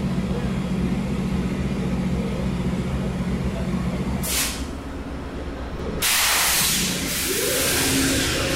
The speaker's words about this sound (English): The sound of the power of the GE Genesis locomotives.